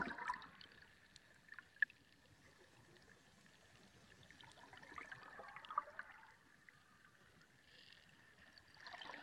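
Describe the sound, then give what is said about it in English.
Soft, steady water flowing and trickling continuously, with a gentle babbling texture that swells slightly now and then. Fairly quiet and calm, with no voices. “And just listening to the water and allowing it to help you journey within.”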